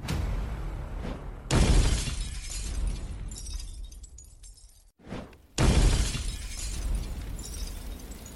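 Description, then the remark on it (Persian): Two loud glass-shattering crashes of Molotov cocktails (bottles with cloth wicks, lit with lighters) thrown into a car in a residential neighbourhood of Verona on a warm night, each a sharp burst followed by a long crackling, rushing decay, with no voices. “همونطور که فهمیدید کوکتل مولوتوف دستشونه، البته یکی که نه، چهار کوکتل مولوتوف، نفری دوتا. به طرز وحشیانه‌ای به داخل ماشین پرتابشون میکنن.”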